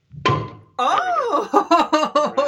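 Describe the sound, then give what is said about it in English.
A small, cheap champagne bottle pops open for New Year with a single sharp burst, followed by a brief ringing tone; then a voice follows with a run of short, rhythmic vocal bursts. “I'm drinking a cheap ass glass of bottle of champagne, just a small bottle because I don't want to get too slurry.”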